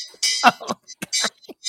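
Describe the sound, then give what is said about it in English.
A hand bell is shaken in several short, bright bursts with brief pauses between them, ringing loud. “Where's my bell?”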